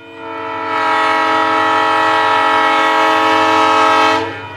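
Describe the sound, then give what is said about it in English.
A passenger train's horn, from the Winter Park Express ski train running between Denver Union Station and the base of Winter Park, Colorado, sounds one long, steady blast lasting about four seconds, loud, over a low rumble from the train, with no voices. “This weekend marks the return of a beloved train and a traffic-free way to get to the slopes.”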